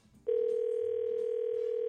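A steady, loud telephone dial tone, as the K95.5 radio morning show places a call to a listener, cuts in after a brief moment of low background rumble and hums unbroken until the end, with no individual key tones audible.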